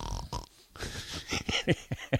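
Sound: snoring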